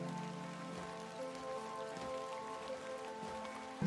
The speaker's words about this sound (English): We stand outside the tavern in the pouring rain.